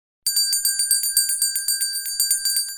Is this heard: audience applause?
no